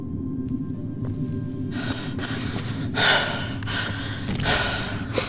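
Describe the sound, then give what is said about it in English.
Heavy, labored breathing after a climb: a series of loud, ragged inhales and exhales with gasping edges, coming in an uneven rhythm like someone winded after exertion, with no talking. “breathing strangely. It's just the climb.”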